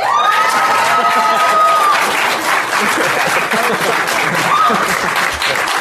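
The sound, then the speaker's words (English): A crowd bursts into sustained, loud applause with whoops and cheers, steady clapping filling the whole stretch, a few high shouts rising above it. “by round of applause, who would really like to see Garrus and Varric hang out?”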